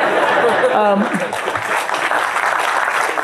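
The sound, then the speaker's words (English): An audience claps steadily for a few seconds for the youngsters among them, a dense, even wash of hands, with scattered voices, a brief whoop, and light laughter mixed into the applause. “Let's clap it up for some of the youngsters in here.”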